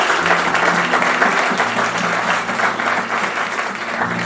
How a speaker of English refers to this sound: How, can you give them a round of applause?